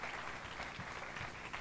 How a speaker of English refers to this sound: Round of applause for our shepherds, please. Well done. Go and sit down. Thank you.